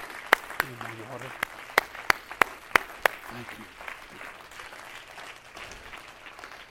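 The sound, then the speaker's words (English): Many people clap their hands to the Lord, a steady wash of applause with several loud, sharp claps in the first few seconds. It then fades as a man briefly speaks. “Everybody clap your hands to the Lord for a moment.”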